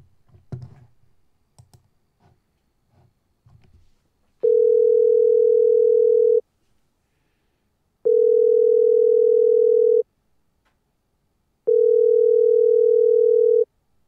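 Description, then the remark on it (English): A few quick taps and clicks of a number being dialed for an outgoing phone call, then a steady ringback tone sounding three times, each lasting about two seconds with short pauses between, clear. “That one's blocked. Let me try my other number.”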